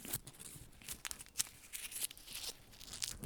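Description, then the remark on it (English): Dry, brittle crunching of a dried dead moth on a microphone: a quick run of crackly, crinkling snaps with sharp bright bursts, fairly quiet and steady throughout, with no voices. “It's so crunchy. Sorry, I had to get that on the mic.”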